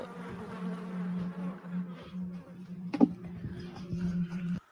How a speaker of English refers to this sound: Oh, yes. Flies. Ugh.